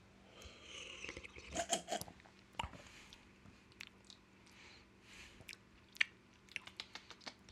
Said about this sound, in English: You wanna give it a sip? Alright, let's clink it. And drink it.